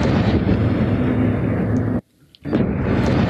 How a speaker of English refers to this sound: So I'm going to do number three right now. Okay. Matt, can you sound off the cannon? Yeah. Twice.